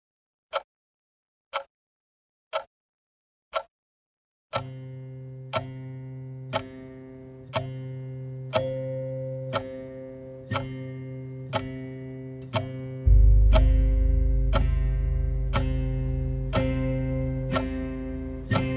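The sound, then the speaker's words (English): A wall clock ticks steadily about once a second, a few clear ticks alone at first, then continuing under sustained musical tones that later gain a deep, swelling bass. “and time is an illusion, but try telling that to the bell ringer in the big chapel, or to my grandmother when she finally stood on a kitchen chair and reached for the hands of the clock on the wall.”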